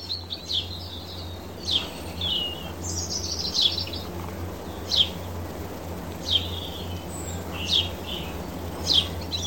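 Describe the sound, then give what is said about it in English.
A robin sings high, thin phrases repeating every second or so, with a blackbird singing, rooks cawing and a house sparrow chirping faintly behind it over a steady low outdoor hum. “The beautiful song of the robin takes centre stage, with some great backing vocals from a blackbird, the percussive cawing of some rooks, and the upbeat chirping of a house sparrow.”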